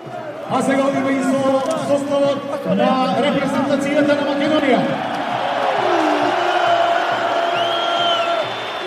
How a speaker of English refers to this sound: Twenty-five minutes in, and the Macedonian crowd have had their first real chance to get going.